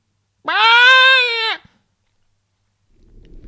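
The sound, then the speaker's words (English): A fox's scream, from a fox mating in the woods at 8 p.m. on a very dark late-October night: one loud, harsh, wailing cry of about a second with a steady high pitch that cuts off abruptly, followed by silence and then a faint low rustle. “But Jemima, a northern country lass herself, assures Amanda it is just a fox mating.”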